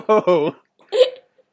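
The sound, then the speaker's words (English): A person's voice imitates the hiccups and belches made by the cartoon character Barney, with two quick voiced gulps followed by a short, raspy burp-like burst, fairly loud. “It's just these little odd belching noises and little odd hiccups here and there.”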